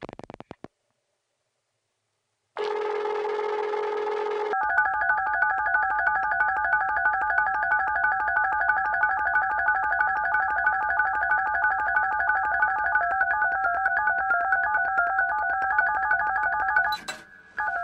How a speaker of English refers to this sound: So a dial tone, if you just hear it on the phone, it's just a dial tone. That's all it is. But if you hear it in a musical context, it becomes something else.